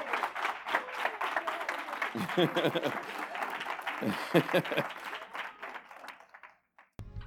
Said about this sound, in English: That's all I got for this morning. Come on and give him a hand clap of praise.